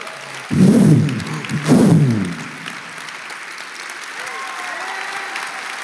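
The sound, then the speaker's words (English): An audience breaks into two short, loud bursts of clapping mixed with voices during a sermon, each lasting under a second, then the applause quickly dies away, leaving a low, steady murmur with faint sustained tones. “Now, those of us who made the decision to glorify God, we leave this earth because we glorified him, and we have, get ready to clap, new glorified bodies.”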